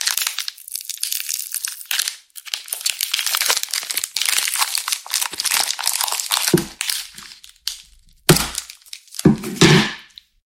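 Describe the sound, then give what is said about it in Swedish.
Crinkly foil and wrapper rustling runs most of the way through, followed by a few sharp cracking snaps as a chocolate bar that had been kept in the fridge is broken apart near the end. “Okej, minus till att det inte var så bra brytbitar. Den har legat i kylen.”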